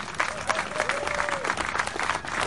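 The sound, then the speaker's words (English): A crowd at an Abolish Slavery Colorado event in Colorado applauds steadily, dense overlapping claps forming a broad, sustained wash of noise throughout, with a faint tonal whistle or cheer gliding through the middle. “So I want everybody to give yourselves a round of applause.”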